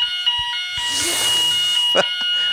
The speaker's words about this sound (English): It's 11 a.m. There's the fire alarm. Jesus Christ. You nearly jumped a country mile there. I know. You told me this morning, fire alarm's going on at 11 a.m. Be prepared.